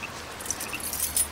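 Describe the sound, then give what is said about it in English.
A bunch of keys jangles, a series of bright metallic jingles and clinks over a second or so, building slightly toward the end with no voices. “I got the keys.”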